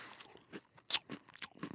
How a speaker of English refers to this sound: I can bite part of one pretzel, then bite the side of another pretzel, and then I hook them together, and I can count that as one pretzel. Mm. Boy, that was good.